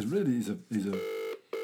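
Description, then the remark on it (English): A brief stretch of talking, then a steady electronic ringing tone over a phone line on speakerphone: one burst, a short gap, and a second burst starting, fairly loud. “I'm going to call him now. I'm going to put him on the speakerphone and I'll get through to him.”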